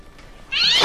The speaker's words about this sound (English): Jeez! It was just a cat. Let's keep moving. Holy crap! What is up with that cat? Is someone throwing it? Let's not keep moving, because there is an insane cat down here. I guess the cat gets louder, too.